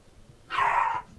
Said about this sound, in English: Those dogs. Their dogs are getting in a gang fight right now. Yeah. They are. They're about to jump in the little one. That's Charles Luciano, and that's Cocolicious Luciano, and they're evil.